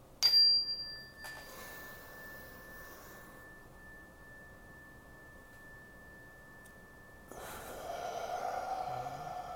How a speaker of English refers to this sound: So we're going to just take three or four cleansing breaths with the chime. Nice big deep inhales, holding for a few counts at the top and some exhales.